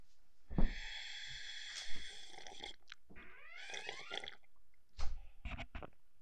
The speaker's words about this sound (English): I hope you guys like the sound of sipping tea.